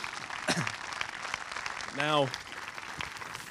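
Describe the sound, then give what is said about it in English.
An audience applauds steadily throughout to welcome a guest, a visiting professor of journalism at Kingston University; a dense wash of clapping at even loudness, with a single voice briefly rising above it partway through, like a short call or cheer. “Samira, welcome, and give her a big hand of applause.”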